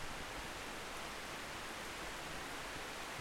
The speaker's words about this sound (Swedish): Det bara regnar och regnar och det bara regnar hela tiden. Och det regnar och regnar och regnar mera. Fast det är liksom en nu korta regnperioden i Kenya, men den borde ta slut nu, så december borde sen vara en torr månad.